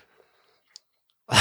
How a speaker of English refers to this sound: I don't know if you hear that, guys. Should we explain that? Scooby's sneezing like a maniac. I have Scooby sitting next to me, and he had a little sneeze attack. Are you feeling better, Scoob? He looks like he's doing better.